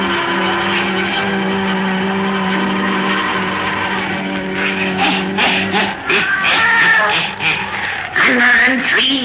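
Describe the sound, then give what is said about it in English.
A black cat, Satan, yowls and meows in drawn-out, wavering cries, fairly loud, rising over a sustained droning tone before a few shorter mews follow near the end. “weird, blood-chilling tales told by old Nancy, the witch of Salem, and Satan, her wise black cat.”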